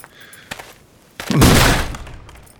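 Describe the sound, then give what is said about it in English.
A couple of faint knocks, then a heavy thud as the rusted door of an old mausoleum is kicked open, followed by a loud, rough crash and scrape that swells briefly before fading. “Is there a door you won't kick down without permission?”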